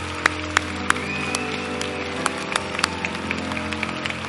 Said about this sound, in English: It's time to cheer them.